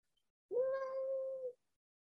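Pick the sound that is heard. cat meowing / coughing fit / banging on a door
cat meowing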